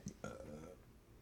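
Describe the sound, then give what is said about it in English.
A small, short burp, a brief throaty croak lasting about half a second after a faint click, fairly quiet and heard on its own without talk. “A little tiny burp.”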